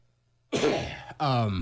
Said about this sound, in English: Those coughs too. I would probably edit those coughs off too.